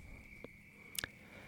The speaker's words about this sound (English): And I had this radio magic idea where I was just going to record about a good hour and a half of just pure cricket sounds as what you're hearing now. My own recording, so I'm not using anyone's sounds.